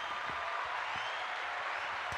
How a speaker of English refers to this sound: But everyone, give Coach G a round of applause, would you?